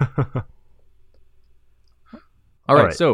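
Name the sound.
dice rolling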